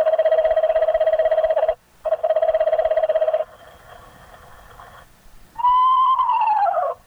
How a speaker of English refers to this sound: Suddenly, the field loudspeaker lets off his first chorus of pre-recorded owl calls.